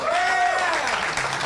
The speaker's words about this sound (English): We got Jimmy Dunn. That's where you applaud.